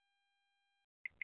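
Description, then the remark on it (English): A phone notification beep sounds twice in quick succession as a picture arrives on the phone, two short bright chirps near the end, preceded by a faint steady electronic hum. No one speaks. “There's a picture that just showed up on my phone.”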